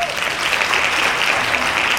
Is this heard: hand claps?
yes